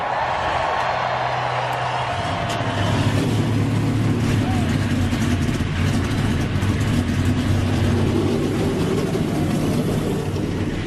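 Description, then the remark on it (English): Loud race car engines fire up together and rev hard, a dense, roaring wall of mechanical noise that swells after a couple of seconds and keeps growling steadily. “It's time for the most famous words in motorsport. Drivers, start your engines!”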